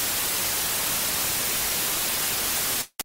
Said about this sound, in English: Still got the static sounds, you hear me?